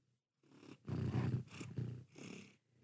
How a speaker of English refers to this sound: Yeah, she's purring in the mic. I hope you guys can hear this. She's so cute.